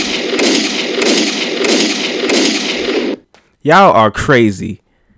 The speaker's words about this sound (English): Hold on, where the fucking gunshots? Where are my gunshots?